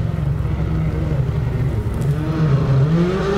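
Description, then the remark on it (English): A Toyota rally car driven by Estonian driver Ott Tänak roars past, its engine note rising and falling with a rough, uneven rasp as it accelerates, then fading slightly under a steady low rumble. “I've lost count of the cars going through and who's which.”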